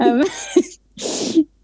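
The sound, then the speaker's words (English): Two rough coughs with a short pause between them; the first starts with a voiced, throaty edge before breaking into a harsh burst, and the second is a breathier, noisier hack. “I'm gonna cough over the top of me again.”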